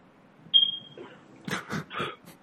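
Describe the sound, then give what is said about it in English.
A single high-pitched electronic chirp from a smoke alarm with a low battery, sharp and brief with a short fading ring, followed by a few muffled bursts of noise. “Somebody need to get a smoke alarm. Get your priorities.”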